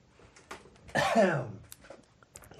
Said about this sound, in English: Let me just clear my throat for my show.